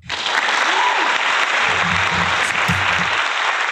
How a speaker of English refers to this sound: It was a little bit of a delayed clap there.